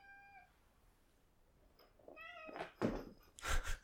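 A cat meows several times, starting with a thin high cry, then louder, rising and more insistent meows toward the end, with no talking.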